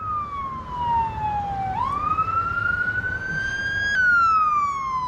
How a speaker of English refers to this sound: Another fire truck. Wow, guys.